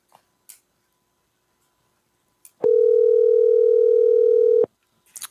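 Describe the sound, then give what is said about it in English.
A single two-second burst of a telephone ringback tone of an outgoing call, a steady, fairly loud electronic hum heard alone, with a few faint clicks before and after. “I mean, it rang a couple times.”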